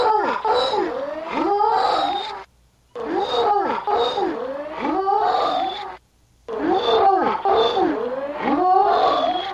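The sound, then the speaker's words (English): A dog makes long, sliding, moan-like vocal sounds in three loud stretches separated by short pauses, its pitch rising and falling as if talking, with a puppy joining in. “This one's a lot tougher to hear, and there's a puppy in there, but what I hear of it, and this may sound like an ego trip on my part, but I really do hear this.”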